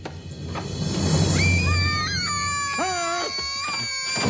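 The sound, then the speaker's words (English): A person imitating a scream: a loud, high-pitched scream with wavering, sliding tones rises and bends over several seconds above a dense, noisy background. “Just like it when he screams.”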